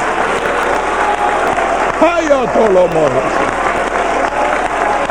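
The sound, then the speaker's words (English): An audience claps loudly as a clap offering to the Lord during a celebration, in a dense, continuous wash of applause, with a voice briefly calling out over it in the middle. “Let's just make this place alive and make those boards move around a little bit with a loud clap offering to the Lord.”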